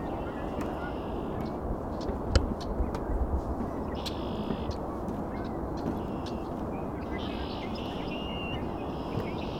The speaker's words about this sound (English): That means this place is full of red-winged blackbirds. Also Canada geese here, ring-billed gulls, probably some ducks, song sparrow. Might be some other sparrows here too.